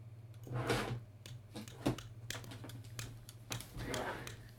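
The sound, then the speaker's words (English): Keys pressed one at a time on a ZX Spectrum computer keyboard, a series of irregular clicks and taps over a steady low electrical hum. “I said ZX Spectrum or Commodore 64. It's a ZX Spectrum!”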